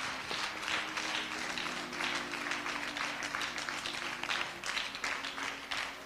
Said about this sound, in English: Come on, clap your hands. Tell the Lord, thank you.